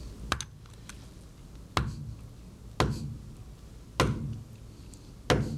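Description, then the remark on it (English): Sharp chisel strikes against the petrous portion of a temporal bone to knock its top off: five or six distinct cracking taps spaced about a second apart, fairly loud, each with a brief ringing tail and no talking. “Now, with a chisel, we want to direct that blow such that we knock the top off of the petrous portion of temporal bone, and we'll do that now.”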